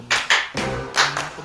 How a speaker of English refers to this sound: Clap time! Clap!